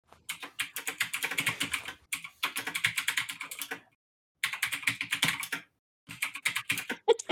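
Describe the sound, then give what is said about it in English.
Rapid clicky typing on a mechanical keyboard, coming in three bursts of fast keystrokes separated by short pauses, fairly loud with no talking. “You hear your mechanical keyboard.”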